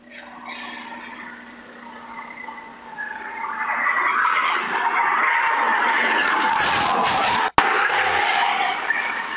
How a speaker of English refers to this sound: And then watch how fast she goes buzzing by. You can hear her screeching in. Okay. So we're talking like 80 plus miles an hour.